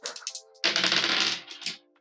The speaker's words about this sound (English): I'm gonna roll 2 die and take the lower because I 1 die for sheer luck, and then there's a very good chance they're not, so I'm gonna take a die away for that.